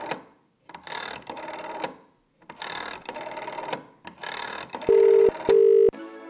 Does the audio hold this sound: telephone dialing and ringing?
yes